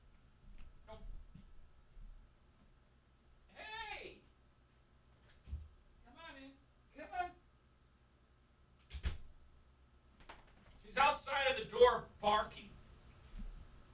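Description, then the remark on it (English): A dog barks and yelps in several muffled bursts from outside a closed door, with a couple of sharp thumps against it and a louder cluster of barks near the end. “hold on a second, Daisy's barking”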